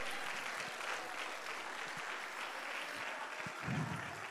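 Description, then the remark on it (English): An audience at a church service claps their hands at a preacher's call in a steady, dense wash of applause lasting about four seconds, loud and sustained with a few sharper claps standing out near the end. “Give a hand clap right now.”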